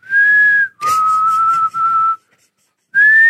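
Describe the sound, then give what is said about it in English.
A person whistles loud, sustained tones into a microphone in three phrases, with a short breathy burst and a brief silence before the final note. “It's a fucking lonely whistle over here. I can't do it. I can't whistle on a mic.”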